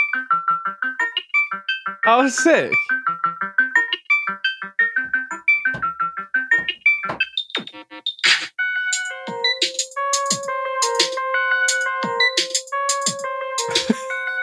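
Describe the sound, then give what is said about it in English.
A melodic synth sequence from a music app, using the Junos sound, plays bright, bell-like tones in a quick stepping pattern with sharp percussive clicks, then settles into sustained layered chords with tapping hits. A voice briefly exclaims early on. “we can get to the melodic sounds.”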